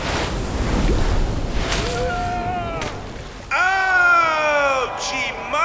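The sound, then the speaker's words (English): A large ocean wave, the last wave of a competition, roars and crashes in a loud, broad rush of surf, then excited voices shout and whoop over the lingering wash of water. “And here comes the last wave of the competition.”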